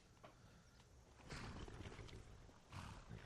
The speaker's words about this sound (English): I swear I heard a dragon off in the distance. You hear that? Yes. Let's not mute it.